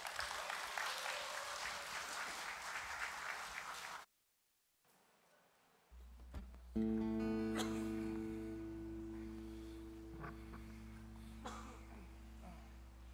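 A crowd claps steadily in a dense burst of applause for about four seconds, then it goes quiet before a band starts playing with a droning low tone and sustained chords.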